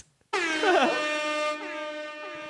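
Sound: air horn blast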